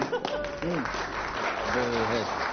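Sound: audience applause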